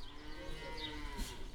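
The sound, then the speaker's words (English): A single long, low moo from a dairy cow at Bohannon Farm, a family farm with about 120 dairy cows, steady and loud throughout, with a slight rise in tone near the end and no talking. “Nate Robertson is in charge of the dairy cows, about 120 right now”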